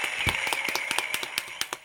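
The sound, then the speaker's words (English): A quick run of sharp hand claps, about a dozen in a fairly steady rhythm, moderately loud with no talking, over a faint sustained high-pitched tone. “And so I think that this topic, number one, deserves a hand clap.”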